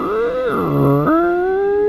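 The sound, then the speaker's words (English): A voice imitates a 25-foot-tall double door of bleached wood with bronze fittings, the entrance to a ruined keep, creaking open: a loud, drawn-out groaning tone that slides, dips lower in pitch, then jumps back up and holds steady, with no other sounds. “Yeah, and Fest opened the door and it sounded like...”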